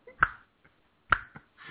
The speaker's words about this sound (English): Everybody snap your fingers now.